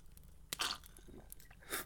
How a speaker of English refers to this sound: Okay, so perfect. Number one, cheers, good buddy. Oh, yes, cheers. Cheers, of course. Take a little sip.